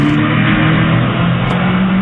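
A stolen car's engine roars loudly and steadily as it accelerates away, its deep droning hum filling the whole moment with no voices over it. The car was stolen from a man while he was delivering a pizza.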